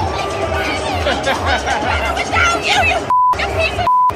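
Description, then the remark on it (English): Loud crowd noise and raised voices fill the scene at Oregon, then two short, steady censor bleeps cut in near the end, each a pure high tone blotting out a woman's shouting at Lincoln Riley. “Yeah, can't really hear anything out there outside beeps, but if you saw the video, it's pretty awesome.”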